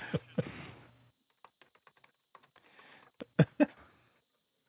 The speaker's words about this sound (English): I'm typing on Facebook, which I hate doing at the time, back and forth.